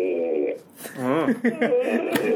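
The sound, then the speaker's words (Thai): A voice imitates slippers being slowly dragged across a dry floor with a drawn-out series of breathy, scraping vocal sounds that rise and fall, somewhat like a chuckle. “เสียงรองเท้าแตะมันค่อยๆลาก มันลากยังไงให้เป็นอย่างนี้วะ ต้องลากไงวะ โอเคแห้งๆบ้าง คือมันไม่ใช่พื้นเปียกใช่ไหมพื้นแห้งที่แบบเหมือนรองเท้าเดินยาว”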